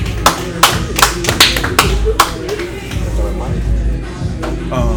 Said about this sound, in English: Give yourselves a round of applause for even coming in the building. We live.